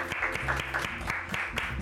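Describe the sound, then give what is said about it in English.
A slow clap at a whiskey tasting after trying Paul John whiskeys from India: sharp, evenly spaced handclaps repeat in a steady rhythm, about seven in under two seconds, loud over a low droning background. “Nothing like a good slow clap.”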